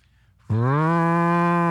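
A cow lets out a single loud, sustained moo that begins abruptly after a brief quiet moment and holds steady, full-throated, with no voices around it.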